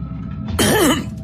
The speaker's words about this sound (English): having to clear his throat twice.